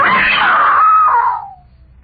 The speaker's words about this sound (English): Yeah, I screamed. What good was that?